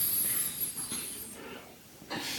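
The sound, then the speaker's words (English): A slow, airy inhale through the nose, a soft hissing rush of breath that swells and fades over a couple of seconds, fairly quiet, with no talking; a person sitting and breathing deeply in the morning. “Breathing in through my nose.”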